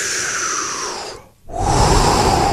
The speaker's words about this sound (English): Deep breathing exercises. I was just reading a study. Excuse me. I got to do mine.